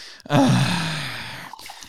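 A man pours himself more of a drink in one steady stream lasting just over a second: a loud, splashing hiss with a low gurgle at the start that gradually tapers off. No one speaks.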